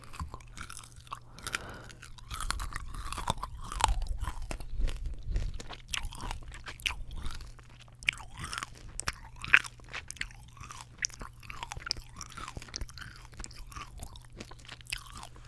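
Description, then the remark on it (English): Steady chewing of a hard Colombian coconut turrón candy, with repeated crunching and sticky mouth sounds in an irregular rhythm, alone without talk, over a faint low hum. “Turrón. El sabor con mucho coco. So this is like coconut, not caramel, but it's like put together like in a thing, but it's coconut.”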